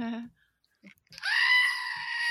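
A brief bleat, a short pause, then a loud, sustained screaming goat cry that holds a harsh, strained tone for over a second, alone with no talking.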